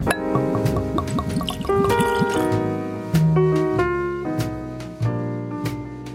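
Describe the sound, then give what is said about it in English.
A drink is poured steadily into a glass, the liquid gurgling and splashing while the ringing tone climbs in pitch as the glass fills. No voices are heard. “Yes, sir, we do have to do what we always do, and that is a very special segment we call Pour and Score, because when you're watching America's Greatest Pastime, whether you're in the stands or at home, you got to enjoy only the best libations to go”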